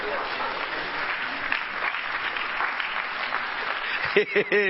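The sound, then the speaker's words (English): A crowd applauds steadily, the dense clapping filling the space, before a voice breaks in near the end with a loud exclamation. “That's a cockroach clap.”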